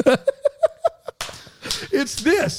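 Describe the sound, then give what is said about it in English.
A quick, even run of about six sharp hand claps made with the hands over the head, each with a slight ringing snap, followed by bursts of laughter and voices. “do the clap over your head.”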